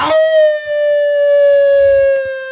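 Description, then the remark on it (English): A person imitates a wolf howl with one long, loud, steady tone that starts with a quick rise and then drifts very slightly lower in pitch across the whole stretch. “Especially with my wolf howl I did at the last episode. That was a pretty good one, though. Yeah. Can you repeat that performance?”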